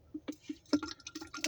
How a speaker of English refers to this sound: I'm pouring this iced tea in here, man.